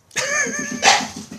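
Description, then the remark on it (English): A dog lets out a drawn-out, high-pitched whining bark followed by a sharper bark, fairly loud, with a faint rhythmic rumble underneath. “Cool, a dog cast.”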